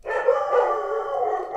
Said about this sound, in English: Sorry, boys. There's nothing... The dogs are just doing their job.